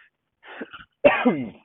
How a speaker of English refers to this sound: Got peanut M&M's still stuck in my throat. I should try to fully cough those out before doing a podcast.